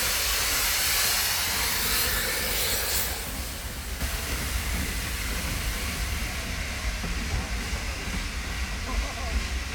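A steam train hisses loudly at Goathland Railway Station, a strong rushing blast for several seconds that eases into a steadier, softer hiss and low mechanical rumble.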